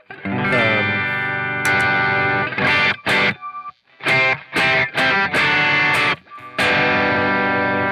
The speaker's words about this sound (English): So would the Tube Screamer not be the overdrive mode on it? I don't know.